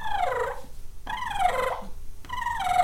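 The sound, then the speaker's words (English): A person imitates a turkey's purr call by fluttering their lips, almost like gargling, producing three rolling, trilling bursts of about a second each. They are fairly loud, with short pauses between them. “What's your, how do you pulling that off, the purr?”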